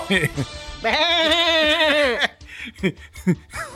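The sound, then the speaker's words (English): A man's voice imitates a ram's bleat, a long wavering nasal bray of about a second and a half, loud, followed by brief chuckles and talk. “So I'm just stalling for time until he comes back to give us that Ram sound.”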